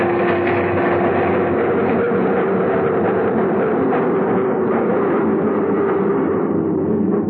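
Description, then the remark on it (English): A loud, steady rumble of a subway train fills the space, with clattering and a droning hum that eases slightly toward the end as it slows down, stopping at the 59th Street station. “Stopped at the 59th Street station, and he got up to leave. I followed him out of there. We got off the train”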